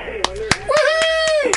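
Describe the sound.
A thin applause sound effect: about six slow, evenly spaced hand claps, close and fairly loud, while a voice holds a long drawn-out cheer underneath.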